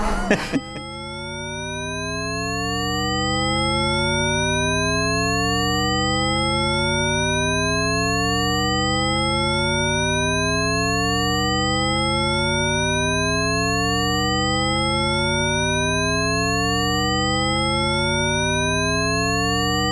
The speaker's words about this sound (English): Yeah, in which case you might just hear an alarm over and over again.